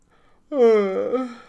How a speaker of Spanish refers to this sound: ¿Te acostaste tarde ayer? Se te ve cansado. Estás bostezando.